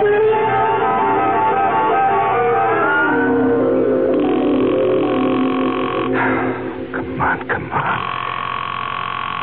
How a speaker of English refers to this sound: The phone.